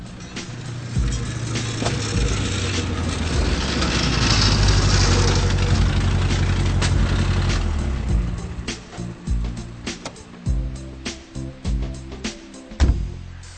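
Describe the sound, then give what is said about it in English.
A car with a rough, worn exhaust drives into the yard of a car repair garage, its low engine drone swelling, then settles into an uneven, sputtering idle with occasional clunks and knocks. “As soon as Philip drives into the yard of the garage, the mechanic also notices that a new exhaust is fällig”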